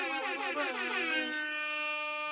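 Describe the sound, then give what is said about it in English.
A blaring air horn sound effect with stacked, wavering tones that settle into a steady, sustained blast, loud, with no voices over it. “Can I get some air horns for Big Dick Scooter?”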